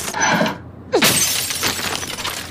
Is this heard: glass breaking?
yes